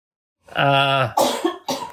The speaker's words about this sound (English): And she's allowed to cough. It's okay.